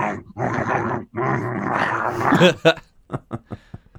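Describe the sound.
A person makes throaty grunting and snorting noises imitating pigs coming to feed, a few rough bursts followed by several short, sharp snorts spaced out at the end, fairly loud.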